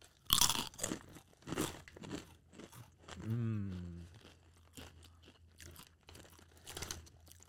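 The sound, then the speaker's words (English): A loud, sharp bite into crunchy Takis Fuego rolled tortilla chips, the hottest, extreme variety, followed by a run of irregular crunching chews. Midway, a brief hummed vocal sound rises and falls over the chewing. “Next up, Takis Fuego. Is this the hottest one, or? Yeah, this is the extreme.”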